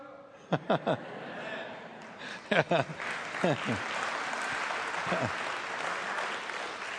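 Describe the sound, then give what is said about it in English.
A crowd bursts into applause and cheering: a few sharp shouts and whoops ring out, then steady clapping swells and keeps going, with more rising cheers scattered through it. “Give a cheer even.”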